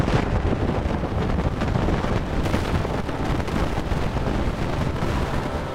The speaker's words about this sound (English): Rather than just plotting it and looking at it, we can also listen to this eruption of particles. And when we listen to it, it sounds like an explosion.